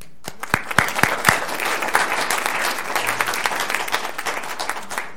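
A room full of people applauding steadily for those standing who have worked for Veterans Affairs, a dense wash of many hands clapping with a few sharp claps standing out near the start, sustained at an even level throughout.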